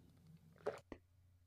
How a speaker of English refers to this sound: Oops, sorry. You took a sip, didn't you? Well, I was going to mute myself for the sip, but then I didn't mute myself for the sip before what I said after. I heard that sip. I heard it.